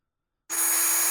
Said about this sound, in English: You just need use the drill the whole time.